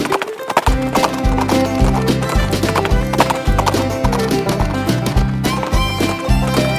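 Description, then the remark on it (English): Horse hooves clip-clop in a steady, rhythmic trot, with a horse neighing, all set over a loud, busy musical backing that runs the whole time. “That sounds like a really cool horse. Let's go ride.”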